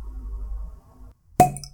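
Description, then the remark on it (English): A cork pulls free of a whisky bottle with one sharp, loud pop and a brief hollow ring, following a few moments of low, muffled handling rumble. “But anyway, let's crack this open.”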